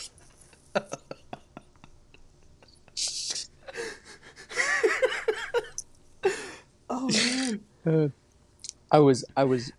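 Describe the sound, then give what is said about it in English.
Someone repeatedly sucks air through a very small sip of bourbon whiskey in the mouth to aerate it, making short wet hissing slurps mixed with lip clicks and breathy, gasping vocal noises. “I was taking such a small amount that I couldn't make a slurp sound, so I was making that sort of aerating noise.”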